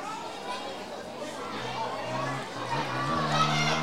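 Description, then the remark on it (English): A football stadium crowd at Linwood Park Stadium, including Gunners supporters, roars and cheers in a dense, steady wash of voices late in a match, with sung, chant-like tones rising through the middle and the noise swelling louder toward the end. “The crowd's come to life in the last couple of minutes.”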